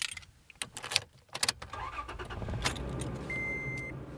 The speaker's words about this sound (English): pile into his pickup truck and drive a few miles down a dirt road to another type of wildlife corridor.